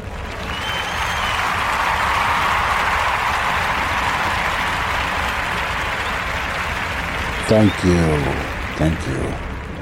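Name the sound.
crowd applause sound effect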